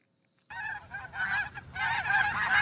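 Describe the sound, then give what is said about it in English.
After a brief silence, a goose breaks into loud honking: a rapid run of harsh, nasal calls that keep going without a break, with no voices. “Up next, a goose who makes a date with danger and, well, you'll see.”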